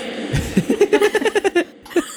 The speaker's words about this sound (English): And then we'll do this thing where it's fart of the week, and then everyone has to guess whose fart they think it is.